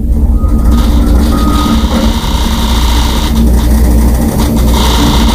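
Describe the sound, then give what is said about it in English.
Road construction noise recorded from inside a house office, with the road torn up in front of the house: a loud, steady low rumble of heavy machinery with a droning engine hum and faint rattling, continuous throughout with no talking. “Jim's got construction going on in front of his house. The road's all torn up, and it's making some noise in his office.”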